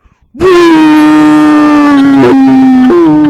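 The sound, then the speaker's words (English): A person vocally imitates a creature's roar: one loud, sustained, strained bellow lasting about three seconds, with a brief break and a slight upward shift in pitch near the end. “do you want to do an impression of that roar for us?”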